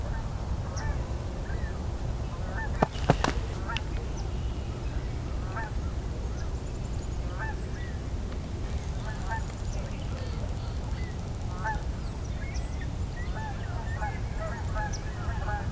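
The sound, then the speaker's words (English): Canada geese honk repeatedly in scattered bursts across the whole stretch, a busy, stirred-up flock, over a steady low outdoor rumble with a brief sharp knock near the start. “The Canada geese are stirred up quite a bit.”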